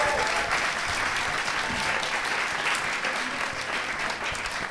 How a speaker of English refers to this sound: Hey, one more round of applause for our